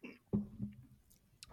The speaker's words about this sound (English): I need to sip a little bit of water now.